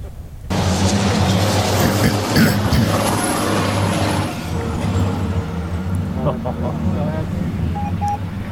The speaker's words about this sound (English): Okay, the BTRA British Truck Racing Championship then, racing over 15 minutes. The Volvo FH Pace Truck, driven by Trucker Johno. Check out his YouTube channel. Leads them away.